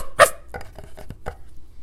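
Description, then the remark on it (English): A person imitates a barking dog: one loud, sharp bark, followed by several softer, quicker yaps trailing off over the next second, with no other talking. “I'm standing in the middle of the hallway listening, and the dog's going,”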